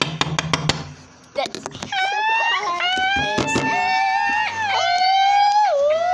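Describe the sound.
Several voices imitate a police siren, holding long wailing tones that slide up and down in pitch together and loudly for several seconds, after a few sharp taps and knocks at the start.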